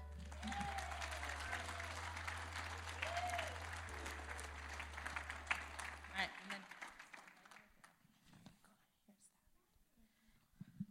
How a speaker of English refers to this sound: All right, kiddos, so I'm going to call some kids up here, and if grown-ups, you'll help me in welcoming them with large applause. Our fifth graders moving on up.